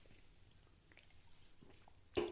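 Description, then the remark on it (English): Near-silent room tone, then a brief slurp of someone taking a quick sip of Coke Zero soda to help a sore throat, at the very end. No one talks. “Coke Zero to help the throat.”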